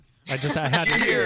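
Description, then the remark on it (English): Glasses clink together in a toast, a bright ringing chime that lingers, with voices murmuring underneath. “We do a brewing. Cheers!”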